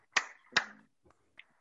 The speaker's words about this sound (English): Please clap your hands together as you take your seats.